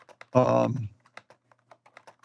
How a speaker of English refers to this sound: And they were starting the magazine, and I was writing things on an old little old typewriter that I'd bought.